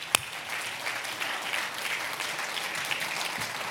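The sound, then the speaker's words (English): A church audience claps their hands and shouts about being blessed by God, in a steady, dense wash of applause, many overlapping claps blending into a continuous crackle, opening with one sharp louder clap. “You ought to clap your hands and shout about being blessed.”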